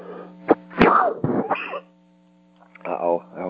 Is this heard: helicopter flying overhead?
no